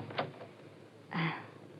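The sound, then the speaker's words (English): A door is handled: a short click or latch sound, then a moment later a longer, fuller sweep of the door moving and shutting, with no voices. “Monahan's in there guarding him, and I'll be right here outside the door.”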